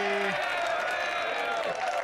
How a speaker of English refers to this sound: Give him an applause or I'll kill you. You don't have to do that. You don't have to do that. I was going to applaud. Thank you.